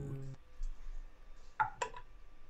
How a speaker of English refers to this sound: That's a 19 on this brand new blood die.